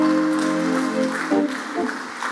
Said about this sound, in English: Give the Lord a good clap of offering.